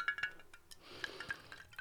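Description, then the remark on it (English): A few light glass clinks, then a quiet, steady thin trickle of thick, naturally flavoured liqueur pouring slowly into a glass like cough mixture, smooth with no glugging and faint tinkling pings along the way. “It's a pure pourer, not even a glug. It just sips out like cough mixture.”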